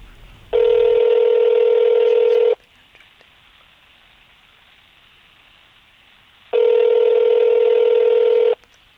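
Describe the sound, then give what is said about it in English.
A telephone call rings out with two long, steady ringback tones, each about two seconds, separated by a quiet pause of roughly four seconds, with no one picking up and no voices. “Now, I know I done told my mama I'm gonna call her, but she is not answering this phone.”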